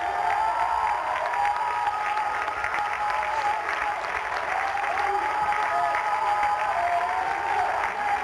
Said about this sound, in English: Come on, clap your hands and thank God you're anointed. Come on, clap your hands.